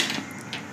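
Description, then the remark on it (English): A quick clatter of dice tumbling across a hard tabletop, rolled for a perception check, a brief burst of small clicking knocks with no voices. “Roll me a perception. Ooh. Do you need dice?”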